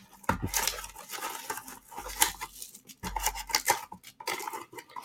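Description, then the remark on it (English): Continuous rustling and crinkling as someone digs through a box full of paper packing, with a few sharper scraping bursts and no talking. “It came with all this like Fred G. Lee paper.”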